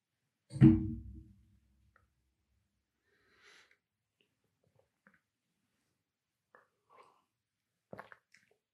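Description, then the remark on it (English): A single loud slurping sip of fresh squeezed orange juice from a local farmer's market near the start, followed by quiet gaps with a few faint swallowing and mouth sounds; nobody speaks. “I'm sipping this fresh squeezed orange juice right now.”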